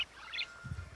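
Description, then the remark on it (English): A one-button plastic toy gives off a quick, thin electronic bird chirp, a few high tweets in a brief burst, followed by a soft low rumble as it fades. “That was like one of the birds. The Robomorpher is might have been generic bird.”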